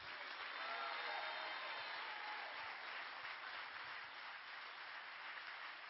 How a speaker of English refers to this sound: If you're going to keep clapping. Keep clapping. Keep clapping. Don't. Keep. Come on. Keep.